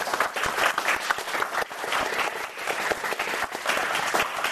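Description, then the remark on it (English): A crowd at a queer trans API community program applauds steadily to welcome the speakers, many hands clapping in a dense, continuous patter that holds at a fairly even loudness throughout, with no voices rising above it. “I selfishly also would like for you to clap again because I think we look and feel amazing and just how beautiful we are as queer trans API people.”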